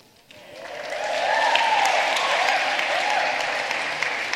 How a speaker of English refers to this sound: Why are you clapping?